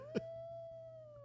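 animal, wolf howling

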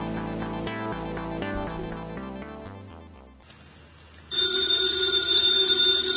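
household object, telephone bell ringing

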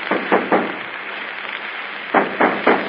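impact, knocking on a door

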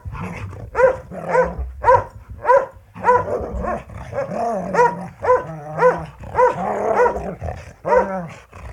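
animal, dog barking and growling

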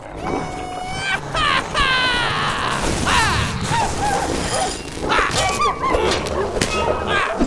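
animal, dogs barking

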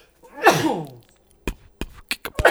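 human body sound, sneeze

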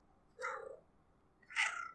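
animal, cat

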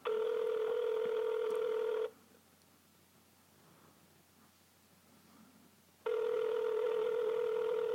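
signal or alarm, outgoing phone call ringing

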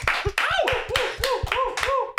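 crowd, applause

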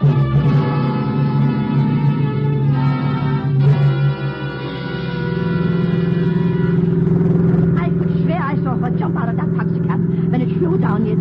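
vehicle, car engine driving

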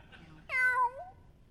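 animal, cat meowing

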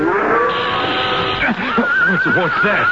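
animal, horse whinnying

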